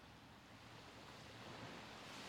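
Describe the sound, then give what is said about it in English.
Steady ocean surf washes onto a beach, a broad hissing roar that swells slightly toward the end, heard alone with no voices. “Find a comfortable seat here on your beach, close enough to hear the waves coming and going.”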